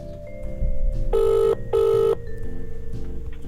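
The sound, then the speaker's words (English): An outgoing telephone call to the CFP office rings through the handset: a single double-burst of electronic ringback tone, two short buzzy pulses close together over a low line hum, with no one speaking. “Right, better phone him.”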